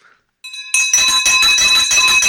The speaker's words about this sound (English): I bet you've been waiting for this victory bell for a long time, my friend.